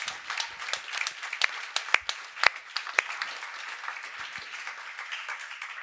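An audience applauds steadily, a dense wash of many hands clapping with a few sharper individual claps popping out above the crowd, no voices over it.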